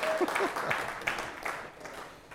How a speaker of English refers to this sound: if you mama'd anybody anytime in your life, happy Mother's Day. Fellas, y'all should be clapping right there. Y'all don't embarrass the pastor now. I said happy Mother's Day.